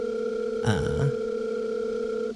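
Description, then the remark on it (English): A cell phone rings with a steady electronic tone that holds for a couple of seconds, broken briefly by a short warbling, voice-like burst near the start, moderately loud. The phone lies face down in a pitch-black living room in the middle of the night. “And I think maybe what you can kind of figure out is that the dim light that you are seeing is possibly whatever cell phone is ringing.”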